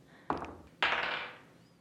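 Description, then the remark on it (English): Dice clatter across a table in two bursts: a short rattle, then a louder, longer tumble that skitters and fades out over about half a second. No one speaks. “Dice off!”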